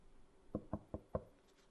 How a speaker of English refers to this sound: Knocking everything. Very polite. I told him to please knock.